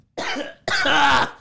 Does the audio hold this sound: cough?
yes